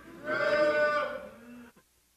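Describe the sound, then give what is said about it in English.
A crowd of people at a sermon moo together like a cow on cue when turning to 2 Thessalonians chapter 2, a loud, drawn-out chorus of voices that swells, holds, then trails off into a few stragglers before stopping. “When you get there, say moo.”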